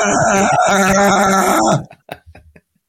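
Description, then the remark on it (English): A person loudly imitates a sheep's bleat as the punchline of an 'interrupting sheep' knock-knock joke, one long wavering "baa" lasting nearly two seconds, followed by a few faint short vocal sounds. “Knock, knock. Who's there? The interrupting sheep.”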